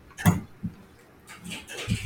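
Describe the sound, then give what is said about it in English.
Heavy rain falls outside, splashing into water in big splashes, while windows rattle and shake, with a few irregular, uneven knocks and heavy splashes standing out over a steady, soft patter. “I'm going to take advantage of the fact that The windows outside, the windows outside are shaking, and there's rain coming down, like heavy like craters in the water, like big splashes.”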